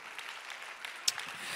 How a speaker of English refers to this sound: If you believe the Lord's going to do it, clap your hands one more time and give the Lord some praise in the name of Jesus Christ.